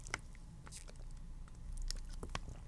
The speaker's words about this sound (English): Let me sip some water real quick.